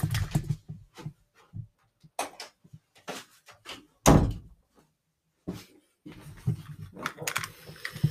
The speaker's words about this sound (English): And oh, I just realized I gotta shut the door. Hold on.